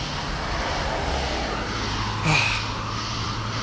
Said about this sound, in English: And if you're hearing cars in the background, that's because I'm walking home.